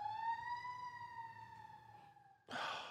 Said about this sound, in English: Fucking Joe got an ambulance.